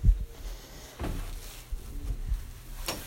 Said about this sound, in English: Shut the door.